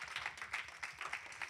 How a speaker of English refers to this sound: Let's give our God a hand clap for the two verses that we learned on this morning. Come on, MSW, let's raise that praise. See, I'm leading us in a hand clap. Let's follow. That's it.